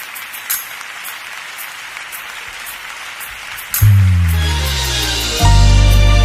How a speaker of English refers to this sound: Applaud God in this room, everybody.